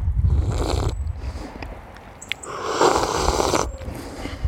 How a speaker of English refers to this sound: But I will be punctuating my Napalm Promo episodes with coffee slurps because, well, at least two people have said they enjoyed that.